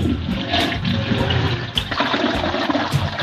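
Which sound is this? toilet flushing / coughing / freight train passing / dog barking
toilet flushing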